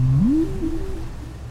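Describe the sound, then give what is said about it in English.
A single low, rising whale call, recorded in the Bay of Fundy off the Canadian coast, sweeps upward and then wavers, heard over a steady rumble of deep background shipping noise, with no talking. “Tyack recorded the calls the whales make.”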